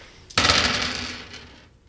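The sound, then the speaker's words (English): A handful of eleven dice tumbles and clatters, starting with a sudden loud burst of rattling clicks that tapers off over about a second and a half, with no one talking. “So you're rolling 11 dice.”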